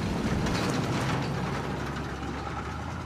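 A car engine idles steadily, a loud continuous low rumble with a faint rhythmic mechanical pulsing and no voices.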